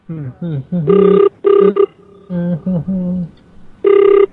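A telephone rings with short, loud, steady electronic tone bursts, three in all, interspersed with wavering vocal sounds between the rings.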